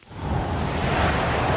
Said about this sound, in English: Sometime in pre-war America, a scrawny-framed man with glasses panically drives through the night in the Mojave Desert, a hard rain pounding the road.